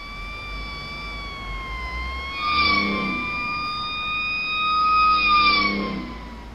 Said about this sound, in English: What's that? Sirens? Oh, damn it. That's not good.